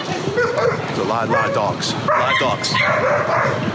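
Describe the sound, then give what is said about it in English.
Several dogs bark and yip in an overlapping, continuous chorus, loud, with high-pitched yelps and whines mixed among the deeper barks. “There are a lot of dogs there.”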